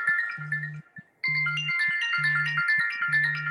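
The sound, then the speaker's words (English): A mobile phone ringtone plays loudly, a bright repeating electronic melody over a pulsing low beat, with a brief gap before the tune starts again. No one speaks. “Okay, somebody's phone is going off.”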